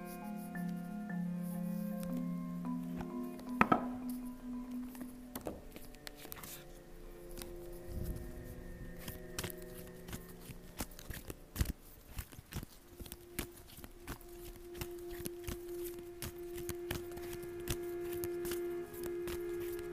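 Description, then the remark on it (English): Cards from the Alice in Wonderland Oracle deck and the Light Shearer's Tarot deck being shuffled, with soft papery slaps and riffles repeating irregularly, over steady background music with sustained tones. No one speaks. “Start shuffling.”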